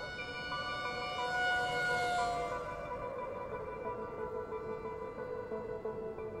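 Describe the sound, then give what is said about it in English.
An ambulance siren wails steadily as it rushes two injured men to hospital, its bright tone shifting in pitch over several seconds, loud, with a faint rumble of traffic beneath and no voices. “An ambulance rushed both men to Paddington General.”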